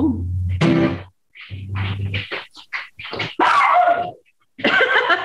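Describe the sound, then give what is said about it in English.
A dog barks and yips in a loud, irregular string of bursts, some drawn out into whiny, growling sounds, with brief pauses between them. “Zoe barking to add, you know, add a little, little veracity”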